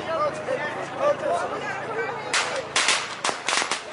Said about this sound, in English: And you're throwing firecrackers that simulate the sound of a gun going off.